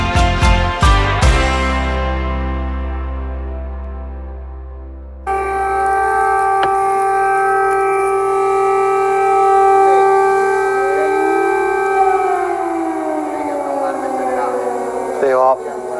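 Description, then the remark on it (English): Several air raid sirens wail loudly and steadily in the center of the Ukrainian capital, their overlapping tones holding a long sustained pitch before sliding down near the end, after a brief ringing tone at the start. “Yeah, it's an air raid siren. Several of them going off here in the center of the Ukrainian capital.”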